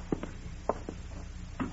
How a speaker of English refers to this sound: Open the door, will you?